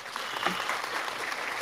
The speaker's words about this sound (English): Sunny, Claps. Bright. Oh, of course. We got to get the applause.